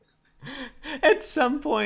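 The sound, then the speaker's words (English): A theatrical gasp from a single person: a voiced, rising exclamation with a breathy rush in the middle, lasting about a second and a half, with no other sounds around it. “At some point, the 1000 is just going to become routine, and I'll stop gasping every time I hear it, but not yet.”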